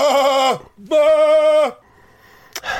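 Two loud sheep bleats in quick succession, each a wavering, nasal 'baa' lasting about half a second, followed by a quiet pause and a brief faint rustle.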